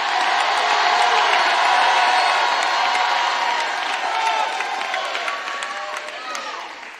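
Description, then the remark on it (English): An audience claps and shouts together after being urged to put their hands together and shout, in a loud, sustained roar of cheering voices and scattered handclaps, easing slightly toward the end. “Put your hands together and shout, because principalities are”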